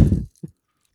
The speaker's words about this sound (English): This is a New England style IPA. Makes sense. Perfect for a day like today. It's like kind of got that fruity note, but it's like dry. It's not too heavy. Give it a little sip here.